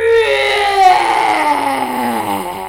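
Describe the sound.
A person imitates the roar of a beast in a narrated group story: one loud, sustained voiced howl lasting nearly three seconds, its pitch sliding steadily downward with a strained, rough edge, with no other talking.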